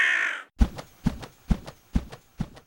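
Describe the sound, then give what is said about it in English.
A brief rushing hiss gives way to five harsh, loud caws from a giant black bird emerging from the image on a shield. The calls are evenly spaced and ring out with a steady rhythm. “Suddenly, a giant black bird emerges from the image on the shield.”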